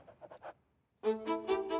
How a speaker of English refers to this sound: Inside a large, luxurious suite on the first floor of the famous Grand Hotel, a 58-year-old woman sits hunched over a desk. Head bowed, her face is wrinkled with concentration as she scribbles across a sheet of paper.